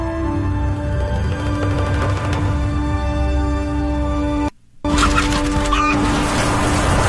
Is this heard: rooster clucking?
yes